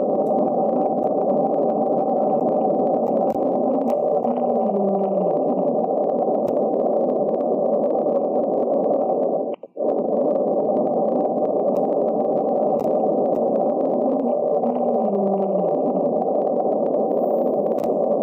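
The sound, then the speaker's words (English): A mysterious underwater ocean recording: a steady, dense low rumble with faint, downward-sliding moans surfacing twice, broken by a brief dropout midway. No voices. “Did you hear that? It reminds me of a whale sound.”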